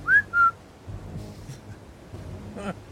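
Two short, loud whistled notes from a person on a ship calling the crew, the first rising and the second held steady, followed by softer muffled rumbling and faint background noise.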